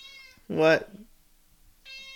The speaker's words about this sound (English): He literally looked at me and went like, meow.